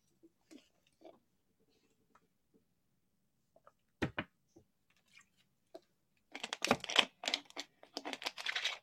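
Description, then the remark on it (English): Someone takes a swig of water: scattered soft clicks and a sharp knock, then a dense burst of crinkling bottle noise and gulping sounds near the end. No one speaks. “That was the sexiest water swig ever.”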